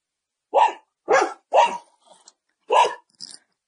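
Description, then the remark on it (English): A neighborhood dog barks four times in a fairly steady rhythm, with a couple of softer yips in between, clear against otherwise quiet surroundings. “Oh, neighborhood dog. Hold on.”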